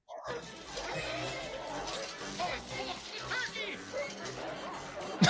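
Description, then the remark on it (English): Fourteen dogs bark excitedly inside a house over a continuous clatter of crashing, shattering dishes as they get at a turkey, a loud and chaotic jumble of noise lasting several seconds with no pause. “All 14 dogs are in the house right now.”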